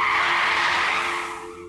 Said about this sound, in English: As I reach down to grab some of my clothes, a car comes screeching to a halt, just barely missing and running over my hand.